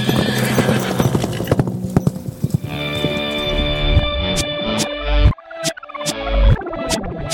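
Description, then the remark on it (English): Horse hooves clip-clop in a steady, sharp rhythm, mixed with a horse's whinnying and snorting; no one speaks over the sounds. “We're going to get you on a horse. Yeah, okay. We've got one out there.”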